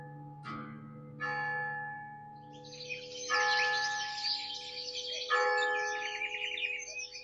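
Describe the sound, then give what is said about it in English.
A large bell tolls four times at uneven intervals, each stroke ringing out and lingering, rung in the morning to summon people to sign a contract, while birds chirp and twitter steadily in the background. “The next morning, I heard the bell rung to summon the people here to sign the contract.”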